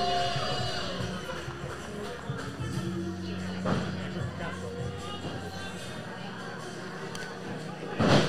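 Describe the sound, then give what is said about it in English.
A large crowd at a contest chants together in a steady, droning mass of voices that holds throughout, with a brief sharp thump near the end. “While I'm inclined to chant everything that everyone in the crowd is chanting, I can't deny that he got the victory there.”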